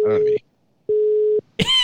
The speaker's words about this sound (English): It's busy. No, it said the line was busy.